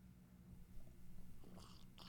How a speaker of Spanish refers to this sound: Mi supremo momento, mi supremo sorbo con té supremo.